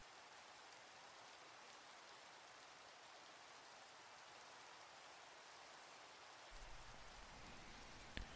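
Steady rain pours down in a dense, even hiss with no pauses, a soft low rumble swelling underneath toward the end. No voices are present.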